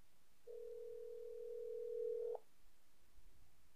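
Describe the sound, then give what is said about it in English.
A cell phone call ringing on the line: a single steady electronic ring tone hums for about two seconds, then cuts off into near silence. No one speaks. “So let's give him a call.”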